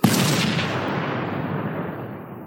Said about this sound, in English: The explosion rattled the whole crowd, and the two buff guys jumped and screamed like girls, knocking the man with the red umbrella backwards to the ground.